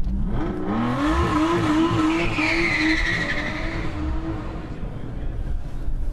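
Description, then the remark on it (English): A V12 Vantage sports car engine roars steadily while its tyres squeal in a long, rising screech as it warms up its tyres with traction control before the start of a hill run, loud, with a rumbling low end throughout. “Oh, that's just warming up the tyres before the start.”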